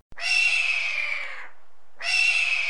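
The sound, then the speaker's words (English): A person's voice imitates a hawk with a loud, raspy screech that slowly falls in pitch, then after a brief pause starts a second drawn-out cry. “Whatever you think a hawk sounds like.”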